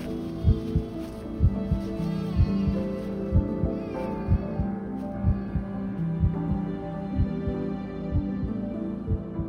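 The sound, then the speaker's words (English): A heavy, pounding heartbeat, a person's blood pounding in their head, thumps steadily and fairly quickly throughout, low, over a sustained droning hum with no voices. “Blood pounding in my head, I take the baby in my arms and pull him out of the wrecked car.”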